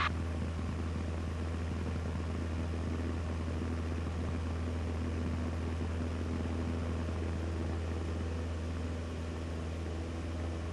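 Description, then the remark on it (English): A Cessna's engine roars steadily at full throttle as it departs runway 32 at Valkyrie, a loud, continuous propeller drone with a deep hum and broad rushing noise, holding constant during the takeoff run after the brakes are released. “And let's go full throttle now. Hold the brakes. No, you can release the brakes.”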